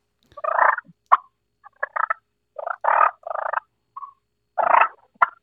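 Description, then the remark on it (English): A turkey call sounds a string of rolling, raspy purrs in short irregular bursts, with a couple of sharp clucks mixed in. It is fairly loud and plays alone, with no talking. “This one is kind of calls will purr better.”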